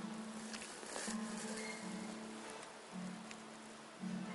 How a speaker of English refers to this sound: Love being in this room when it rains. It's so amazing. Yeah, it's rain.